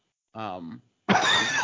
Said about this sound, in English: that's a nice little cough there you got.